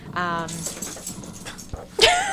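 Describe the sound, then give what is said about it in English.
A therapy dog whimpers excitedly with a high, wavering whine, breathes in quick pants, then lets out a sharper rising whine near the end. “That's Wilson, our therapy exciting. Dog.”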